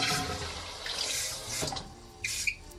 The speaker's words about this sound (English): Oh, that's a strong flush as well. Just needs a second one, all right?